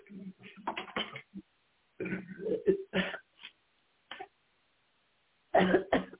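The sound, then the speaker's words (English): A series of harsh coughs in irregular bursts, some clustered quickly together, with short pauses and a final pair of strong coughs near the end, from a person told to take a deep breath and cough during a prayer. “Take a deep breath and cough.”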